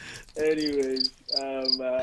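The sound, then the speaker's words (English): A cricket chirping sound effect from a soundboard plays in two loud bursts with a brief pause between them, each a steady trill with thin high tones on top. No one speaks. “Why are you playing cricket?”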